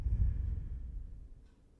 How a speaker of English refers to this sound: Ready? Let's do it together. Breathing in. And breathing out. One more time. Breathing in. And breathing out.